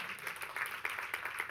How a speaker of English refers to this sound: But we feel like maybe we should start doing more. And someone's clapping. Go for it.